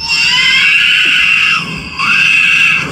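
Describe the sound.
A loud, shrill electronic scream imitating R2-D2's scream from the Star Wars movies, held steady for about three seconds with a brief dip and wavering pitch partway through. No talking.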